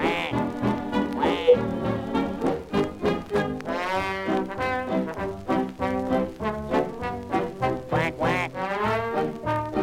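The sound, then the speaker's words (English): A Donald Duck cartoon voice quacks rapidly and almost nonstop for about ten seconds, loud, in raspy, nasal, sputtering bursts, a person imitating a duck in a jabbering, agitated way. “That is why he quacks and quacks at the fellow with the axe.”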